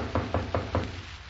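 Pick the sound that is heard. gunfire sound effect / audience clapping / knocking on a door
knocking on a door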